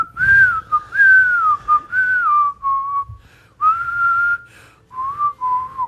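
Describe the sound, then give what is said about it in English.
A person whistles a song melody alone, a clear sustained tune of gliding phrases with brief pauses between them, fairly loud, with faint low background rumble. “I've tried to whistle at it. For songs yeah, where, I've like, whistling is the prominent right.”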